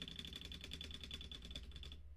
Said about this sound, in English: Yeah. And, you could hear my keyboard. I zoom on that one. I was so loud. I pressed so quickly.